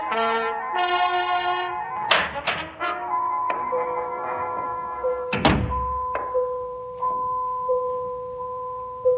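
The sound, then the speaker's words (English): A door is opened, with a couple of sharp wooden clunks and a heavier thud partway through, while steady ringing tones from a phone hang in the background. No one speaks. “The first thing I heard when I opened the door was a sound, a kind of funny one.”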